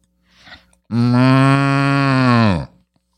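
A single long, loud cow moo, close by and steady in pitch for nearly two seconds, preceded by a brief faint rustle.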